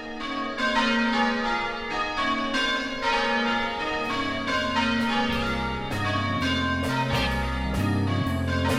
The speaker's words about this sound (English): Now I hear the bells calling me to church.